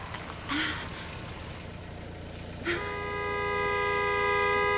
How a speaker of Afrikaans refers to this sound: Hoekom moet hy elke keer so op sy toeter lê?